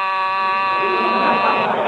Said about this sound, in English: I press the button, the buzzer rings. But if I walk away from the desk, if I do not push the buzzer...